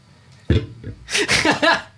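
A man coughs into the microphone: one short, thick burst, then a loud run of three or four harsh, rasping coughs with a throaty, voiced edge, all without speech.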